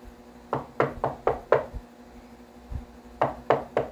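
Sharp knocks on a door during a birthday party, a quick run of five raps followed after a pause by three more, fairly loud with no voices.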